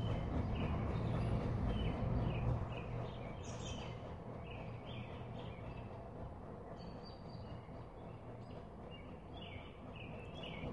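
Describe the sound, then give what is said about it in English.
Outdoor ambience on a beautiful day with scattered bird chirps and calls over a steady low rumble, heavier in the first few seconds, likely traffic or a passing train. No one speaks. “Noticing the birds, the breeze, other noises in our surroundings.”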